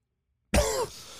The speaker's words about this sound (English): I got this cough.